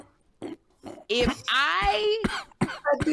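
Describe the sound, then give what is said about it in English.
A voice imitates a few coughs, some short bursts and then a drawn-out, strained hacking sound, loud, with no other sound around it. “Don't be coughing”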